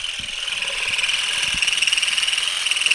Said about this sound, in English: It was weird and super fun. You just kind of combed the vibrating rake through the branches and the olives started whizzing off in all directions.